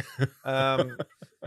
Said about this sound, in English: As you can tell, and I'm going to apologize in this segment. I've not been able to kick this cough, and it's back.